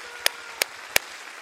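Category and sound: crowd, audience clapping hands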